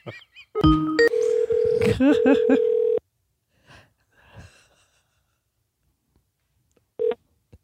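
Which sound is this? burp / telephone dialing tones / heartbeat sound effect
telephone dialing tones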